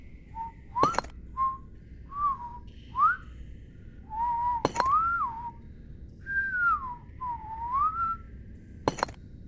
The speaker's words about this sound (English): A figure is busily at work, contentedly whistling a tune as they go.